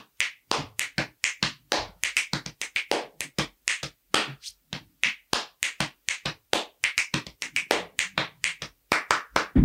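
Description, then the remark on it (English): A steady body percussion rhythm of crisp chest slaps, hand hits and sharp finger snaps, repeating in quick, even patterns for several seconds with no voices. “So just using my chest and my snaps and my hands, right. There's a rhythm that we would do.”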